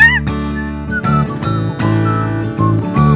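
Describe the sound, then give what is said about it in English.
A whistled melody of short sustained notes, some with a slight wavering vibrato, plays over a steady, full backing of harmonic chords at a fairly loud, even level. No one speaks. “Oh, that's a nice whistling, yeah.”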